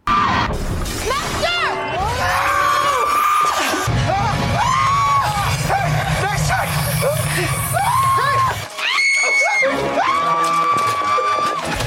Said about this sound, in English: I was about to say that chick ain't even screaming as loud as he is running away from shit like this.